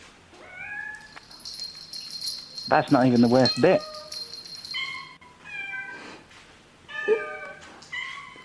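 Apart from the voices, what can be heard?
cat meowing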